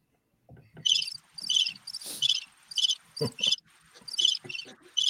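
Crickets chirp in a steady series of bright, pulsing trills, about eight short bursts with brief gaps, clear, with faint low rustling underneath and no voices.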